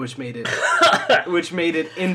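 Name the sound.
person coughing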